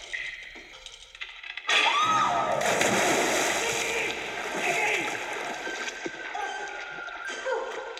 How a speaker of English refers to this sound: And so Nikki obviously falls into the well, falls into the water, and we get Arch and Skip.